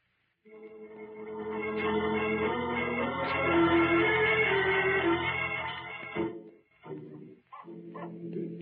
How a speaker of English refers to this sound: Oh, wait a minute. It's only a dog running down toward the freight yard.